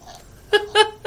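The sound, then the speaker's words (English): A dog gags and retches on a piece of steak caught in her throat, in three short, strained bursts, each louder than the last, with a choking, throaty quality and brief pauses in between. “I think I killed the dog. Was that the bad steak?”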